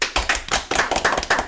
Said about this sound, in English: I mean, that is... Round of applause.